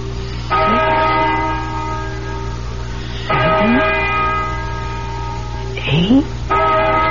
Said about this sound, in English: Listen to that bell.